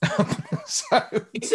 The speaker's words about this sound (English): Sorry, I still got my cough.